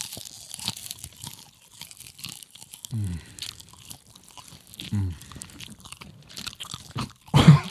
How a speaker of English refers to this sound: We gotta get that mic up. Everybody chew. Come on, everyone, one time. Yeah, ASMR.